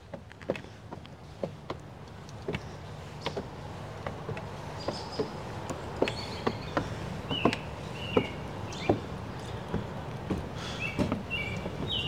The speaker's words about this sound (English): Ooh, good bird sounds.